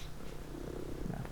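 A female cat purrs, a steady low rumbling drone that stays even and continuous throughout, with no talking over it.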